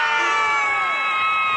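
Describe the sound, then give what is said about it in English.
A crowd of Rivers and Niger Delta performers cheering wildly after a governor announces they will each go home with 10 million naira, a dense, steady roar of many voices with high-pitched shrieks and wails riding on top, loud and unbroken throughout. “And the crowd went wild.”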